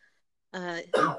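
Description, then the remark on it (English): A brief voiced grunt followed by one sharp cough, short and fairly loud, with near silence before it. “That was a cough.”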